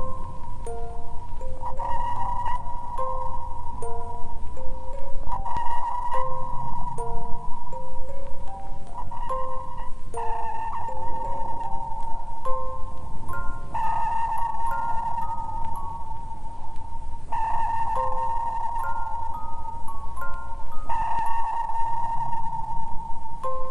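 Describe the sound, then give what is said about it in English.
Repeated sonar pings ring out in a steady cycle, each sharp tonal transmit pulse trailing into hazy reverberation, followed about a second later by a fainter returning echo from a submarine, over constant low rumble. “Now we hear the complete sequence of transmit pulse, reverberation, and 1 second later, the echo from a submarine.”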